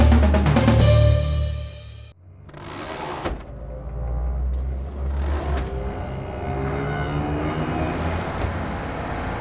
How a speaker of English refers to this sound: driving the back end of the fire engine as we race down the streets.